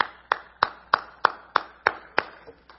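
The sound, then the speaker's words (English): A single person claps steadily, about nine sharp, bright claps in an even rhythm, the last couple softer as the clapping trails off. No one talks. “And I applaud you.”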